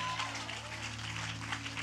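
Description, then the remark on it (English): The standing Lighthouse church audience claps their hands for Pastor Joe in a dense, continuous burst of applause that stays steady and fairly loud for the whole moment, with a sustained low hum beneath it. “Let's clap our hands real big for Pastor Joe.”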